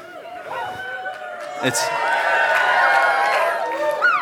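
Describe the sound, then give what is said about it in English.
An audience of many voices cheers and shouts, swelling louder after a moment into a sustained roar of excited calls that holds steady until the end. “People are not cheering enough,”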